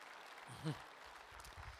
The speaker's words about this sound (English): In fact, yeah, you can give that a round of applause. Some of you are like, want to do that.